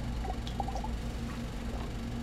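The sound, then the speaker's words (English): Someone drinking water: a few soft, quick sipping and swallowing sounds over a steady low hum, with no one talking. “And I just drink some water.”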